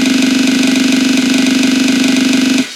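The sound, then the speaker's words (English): A drum roll plays: a fast, steady rattle of hits, loud and unbroken, holding even for about two and a half seconds before cutting off abruptly. No voices are heard. “Should we do a drum roll?”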